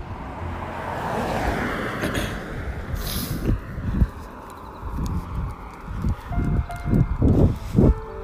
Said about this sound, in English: another car coming. Reagan, off to the side of the road. Hold up. These cars to go by.